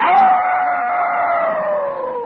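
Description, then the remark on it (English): A single long, wavering howl from a female dog calling to a male dog from a distance holds steady and fairly loud for a couple of seconds, its pitch sliding slowly downward, with no talking around it. “The wild girl dog called to the boy dog, at first from a distance, like this.”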